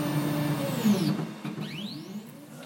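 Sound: 3D printer running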